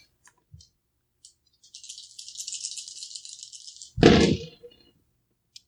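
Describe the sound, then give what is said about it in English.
Dice rattle in a shaker for about two seconds, a bright, steady clatter, then tumble out onto a surface with a loud clattering spill that quickly settles. A few small clicks come first. The dice are rolled for a persuade roll in a game and land on a 3. “It got out of hand, sure, but make me a persuade roll here.”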